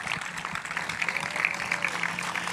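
An audience applauds together, a steady wash of many hands clapping at a moderate level that holds evenly for a couple of seconds with no voices over it.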